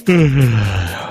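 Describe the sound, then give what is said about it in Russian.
A person yawns aloud, a drawn-out voiced exhale whose pitch slides steadily downward over about a second, with no talking around it. “Зеваю тут.”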